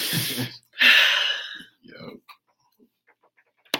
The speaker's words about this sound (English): I'm sniffing all in the mic.